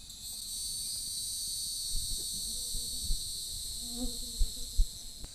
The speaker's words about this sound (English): It's early June. The cicadas are loud as we visit the pine oak woodland at our tour's ecology stop in the Mark Twain National Forest in Carter County, Missouri.